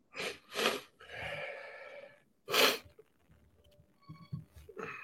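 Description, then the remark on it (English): Congested sniffling from a head cold: two quick wet sniffs, a longer breathy draw, then one sharp loud snort, with faint clicks and shuffling after. No one speaks. “We got super sniffles over here.”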